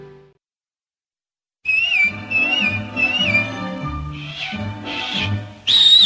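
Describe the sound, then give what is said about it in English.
After a short pause, a bright whistled melody rises and dips over a full, steady instrumental backing, with one louder, sharper whistled phrase at the very end. “because you're going to have so many whistling tunes going on in your head, you're not going to know what to do with them.”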